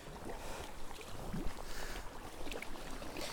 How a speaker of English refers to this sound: And the sea beneath me is a kind of inky, dark green, very deep. Just make out sandy patches showing up as a lighter green, deep, deep beneath me. And the sea makes that kind of sloppy noise as it sweeps in and catches the undercuts of the cliff.